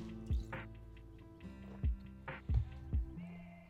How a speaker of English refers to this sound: I'm going to take another drink of water. Watch me.